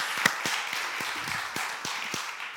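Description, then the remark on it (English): An audience claps together, a dense, steady patter of many hands with a few sharper individual claps standing out. It holds at an even, moderate loudness throughout, with no voices. “That'll hopefully make a point for us, but let's give them a clap.”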